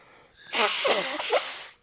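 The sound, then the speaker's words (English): A single long, forceful sniff through a stuffy nose to clear it out, lasting about a second, with a rough, breathy rush and faint wheezy whistles as the air is drawn in. No voices are heard. “I didn't mean to make you self-conscious about your sniffles.”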